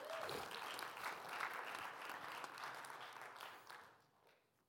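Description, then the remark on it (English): A large church audience bursts into steady, dense applause with scattered cheers after three children were baptized at the church, sustained for several seconds before thinning out and fading near the end. “Like, you can cheer if you want.”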